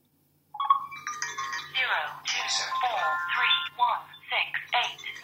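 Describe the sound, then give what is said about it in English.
A telephone's electronic ringing tone warbles steadily as a call placed from a landline phone rings through, also ringing on a BEM wireless speaker band, with a person talking over it throughout. “It's also ringing now for the speaker band.”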